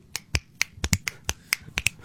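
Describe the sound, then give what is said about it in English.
Fingers snap about ten times in a row at a loose, uneven pace, each snap a crisp, bright crack with no voices. “We're only a few months away from some, romantic comedy coming out and hitting theaters where instead of the slow clap, it's the slow snap where it's just.”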